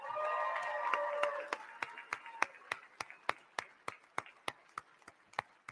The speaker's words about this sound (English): How about those three candidates? How about these three guys right here? And by the way, how about a round of applause for our moderator,